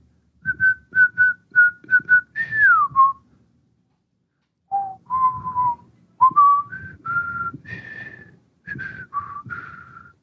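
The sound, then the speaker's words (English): A person whistles a film theme melody: a run of short repeated notes, a sliding phrase, then a pause before longer wavering notes continue. No talking. “I'm sure I butchered it there, whistling it, but it was good to have it back.”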